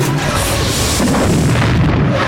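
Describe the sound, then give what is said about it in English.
A loud, deep explosion at the Laguna Caves during a podrace rolls out as a sustained rumble with a broad roaring blast that fills the whole moment and fades only slightly, as the racing vehicles spill out just ahead of it into Canyon Dune Turn; no one speaks. “The vehicles spill out just ahead of the explosion into Canyon Dune Turn, where another danger awaits.”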